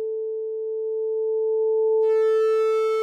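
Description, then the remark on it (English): A steady pure sine tone that grows harsher partway through as distortion creeps in, adding a buzzy stack of bright overtones above the clean pitch. No voices. “Here's our sine wave. And now we gradually add distortion to it.”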